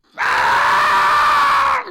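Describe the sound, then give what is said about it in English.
A voice imitates a woman, Dianne Feinstein, screaming in pain as she is lifted out of a chair: one loud, strained wail held steadily for about a second and a half, then trailing off with a falling pitch at the end. “fucking screaming every time she's lifted out of that chair.”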